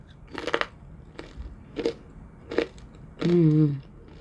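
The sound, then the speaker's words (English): Crisp crunching as someone bites into crispy french fries, four sharp crunches spaced about a second apart, followed by a short voiced hum or murmur at the end. “So if you don't want to hear me crunching, I apologize. But these fries are a little bit crispy.”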